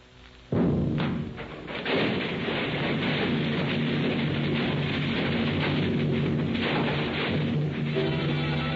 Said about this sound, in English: The center of the Times building blows up. The force of the explosion snaps the girders supporting the second and third floors as so many toothpicks.